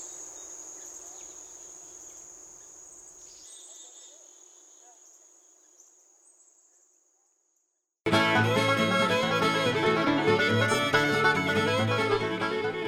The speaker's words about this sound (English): Here's hoping that the crickets keep singing on Max Patch for a very long time.